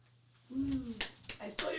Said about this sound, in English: Some claps.